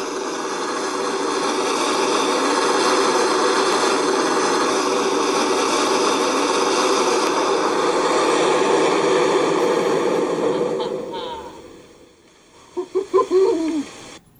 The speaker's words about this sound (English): And the video is just somebody opening a valve and a bunch of steam shooting out.